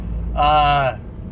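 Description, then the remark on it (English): A truck's engine brake lets out a loud, buzzy, rattling roar for about half a second, then cuts off, over a steady low rumble of road noise. “That's a big old truck driver. That's his Jake brake right there.”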